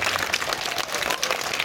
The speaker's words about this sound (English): Can you clap for yourself?